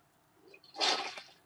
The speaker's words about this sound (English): Gotta flush them toilets every now and again or else they'll seize up. That's true. Turn into sand.